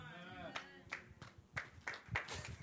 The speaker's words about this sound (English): Come on, guys, that was a golf clap.